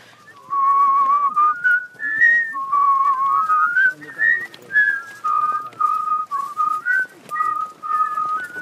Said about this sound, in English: My dad whistled, his dad whistled, I whistle, my son now whistles. So yeah, we're a whistling family.